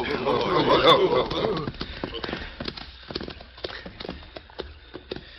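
Horses' hooves clip-clop at a steady, uneven trot, sharp knocks coming close together, following a brief busy burst of sound at the start, as riders arrive at a stream and urge their horses into a dense thicket.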